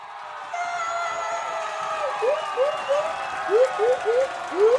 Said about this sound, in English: And I look forward to talking to you about that in a few moments, right after I give myself some applause. So I think I'm going to do the cheering one. Here we go.